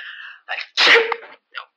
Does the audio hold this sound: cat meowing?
no